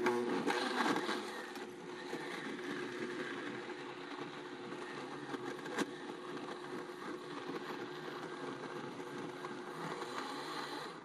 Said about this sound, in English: And I could let that go a little longer, but I mean, that's a BlendTec blender for you right there.